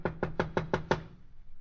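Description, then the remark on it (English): Six quick, evenly spaced knocks on a wooden house door, fairly loud, each with a short hollow thud, followed by a brief quiet. “We're at the house. I'll knock.”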